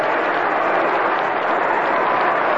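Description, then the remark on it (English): A large baseball stadium crowd of more than 70,000, with the bleachers sold out, cheering in the seventh inning as Campanella bats with runners on first and third. A steady, unbroken roar of mingled voices holds at the same loud level throughout, with no single voice standing out. “And this certainly is a cheering crowd this afternoon, as they really whoop it up today.”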